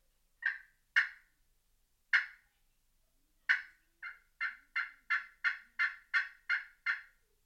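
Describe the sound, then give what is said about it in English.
A turkey tree yelp played on a Hooks Exterminator glass friction call with an Ipe gobbler stick: a few spaced, raspy high-pitched notes, then a steady run of about ten evenly timed yelps, clear and alone with no talking. “That is still a tree yelp, but you would use that in a situation where you're further from the roost.”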